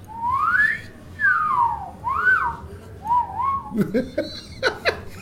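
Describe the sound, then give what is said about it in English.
Someone whistles four or five swooping glides that rise and fall, imitating a slide whistle, fairly loud, then breaks into a few short chuckling bursts. “I'd like a slide whistle.”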